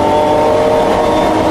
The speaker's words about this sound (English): People think I'm crazy because I drive my super expensive vintage race cars in vintage races that involve a lot of other cars and concrete barriers. But, hey, man, you got to live. Cars, concrete barriers, action.